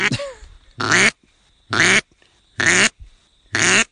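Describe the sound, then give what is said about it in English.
A duck call blows four loud quacks at an even pace, each note short and cut off abruptly at the end, with brief silences between them and a small squeak at the start. “No ducks run their notes through like quack, quack, quack. It's quack, quack.”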